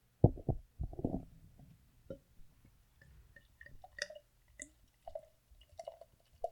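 Barley wine fizzing in a glass held close to the microphone: soft, irregular little pops and crackles of bursting bubbles, faint and sparse, with a couple of duller knocks at the start.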